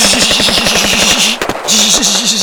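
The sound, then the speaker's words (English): Rapid bursts of automatic gunfire rattle in a steady, fast rhythm, a loud mechanical clatter that breaks off briefly with a sharp crack before the firing resumes. “Like guns clicking, like...”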